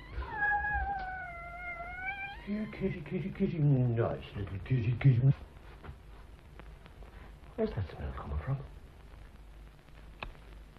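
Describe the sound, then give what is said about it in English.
A cat in an advertisement meows loudly in a long, wavering cry, then yowls several more times in rising, strained bursts, followed by a brief pause and one more short meow. “Did you put the cat out? Well, you always have to put the cat out. Stupid cat!”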